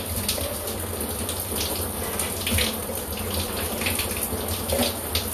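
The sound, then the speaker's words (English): Water pours steadily from a shower, a continuous hiss and splash with faint irregular splatters, and no one speaking. “I'm hoping when I come out of the shower, you guys are sleeping.”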